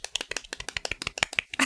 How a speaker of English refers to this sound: A little mini round of applause for Simone Kirby before we even start.